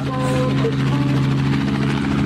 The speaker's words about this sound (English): I'm having far more success just playing the movie Convoy and hearing helicopter sounds.